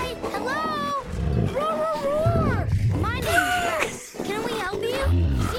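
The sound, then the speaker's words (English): A voice imitates dinosaur roars, a continuous run of loud, drawn-out growling cries with rising and falling pitch, several blending one into the next. “Rex speaks dinosaur, which honestly shouldn't surprise anyone.”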